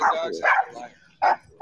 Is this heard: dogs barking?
yes